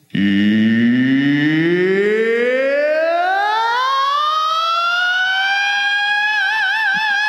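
A sustained dragon scream begins low and gruff, then climbs steadily in pitch for several seconds before ending on a loud, shrill, wavering vibrato. It stands alone, with no talking.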